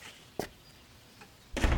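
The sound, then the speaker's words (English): A door at 137 Babbage Street opens to let in chimney sweeps: a sharp click of the latch, a faint tap, then a louder, rustling swing of the door at the end. No one speaks. “Who's at the door”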